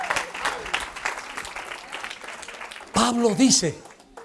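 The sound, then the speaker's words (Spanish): An audience claps for the actors in a steady, dense patter of applause for about three seconds, then a loud voice cuts in over the tail of the clapping. “An applause for the actors.”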